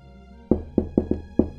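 knocking on a door

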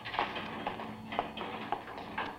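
printing press running rhythmically

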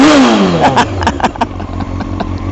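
motorcycle engine revving

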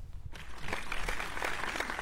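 clapping

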